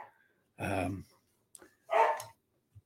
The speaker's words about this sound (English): This dog is really starting to drive me crazy. Hang on a second. Sorry.